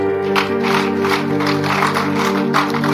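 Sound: audience clapping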